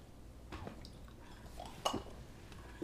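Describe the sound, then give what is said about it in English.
Glasses clink together in a toast, a short bright chime followed by a quieter tap, over low background noise with a brief liquid slosh. “Cheers to the boppies. Ready?”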